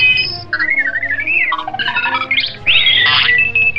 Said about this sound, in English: Both droids beeped excitedly, obviously happy to see each other again.